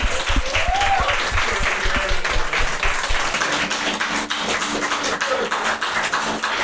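Loud, sustained applause from a live audience, a dense wash of many hands clapping at once, with a few brief whoops and faint voices rising in the middle of it.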